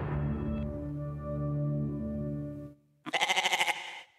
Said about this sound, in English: That really was going to be a bleat. Yeah. A goat bleat. He thought the goat was fun, quote, fun and quirky.